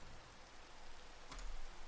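Steady rain hisses alone in a broad, even wash of noise, with one brief sharper patter standing out near the end. No voices are present.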